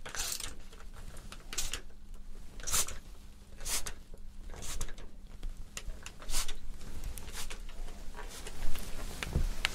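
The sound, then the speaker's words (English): A spray bottle spritzes water onto hair, before it is brushed through to make sure the mousse is out, in a steady series of about ten short, hissing bursts, roughly one per second, with no talking. “So stay still, I'll just give it a spray.”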